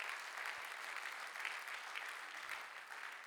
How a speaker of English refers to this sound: Clap your hands if you believe that this morning. Hallelujah.